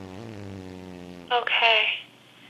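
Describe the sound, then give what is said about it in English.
Muffled fart-machine noises coming through a phone line as its button is pressed: a steady, low buzzy drone, then a brighter, crackly burst of under a second before it cuts off. “I can hear the fart noises, but it's really faint, like very muffled.”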